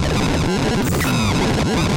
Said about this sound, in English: This is all just from a bunch of sine waves through a slightly high resonant filter, with the filter also being audio rate modulated.